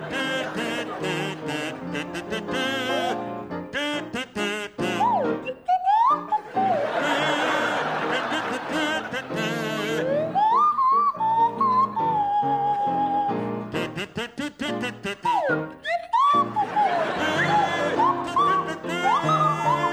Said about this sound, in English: a rendition of … to feature Barry Cryer on the kazoo and Graham Garden on the Swanee whistle